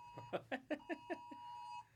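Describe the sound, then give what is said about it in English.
A phone storm warning alert sounds: a steady, piercing electronic tone runs for almost two seconds while six quick, evenly spaced beeping pulses repeat over it, then it cuts off abruptly. “The storm warning?”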